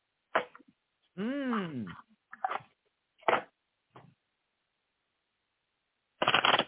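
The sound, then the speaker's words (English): Tarot cards being shuffled before a card is pulled, in several short, crisp bursts, fairly quiet, ending in a longer riffle; a brief voiced sweep breaks in near the start. “I got to do some shuffling here.”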